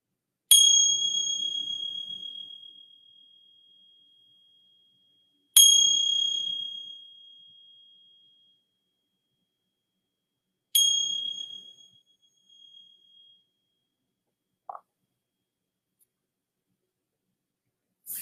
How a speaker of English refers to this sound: And then receiving the sounds of the bell.